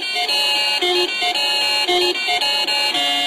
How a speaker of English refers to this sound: To celebrate the 30th anniversary of the Ontario Lottery winning chimes. You know this sound?